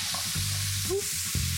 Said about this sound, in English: And then once they're in, take your wooden spoon or your big spoon and uh-huh. just stir them and coat them in the fat.